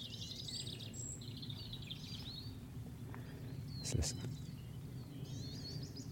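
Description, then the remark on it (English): Several soft willow warbler song phrases from a bird in a stand of conifers, each a sweet descending cascade, over a steady low rumble, with a brief spoken remark partway through. “that willow warbler.”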